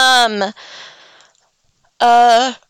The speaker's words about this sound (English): Oh, excuse me, I'm yawning.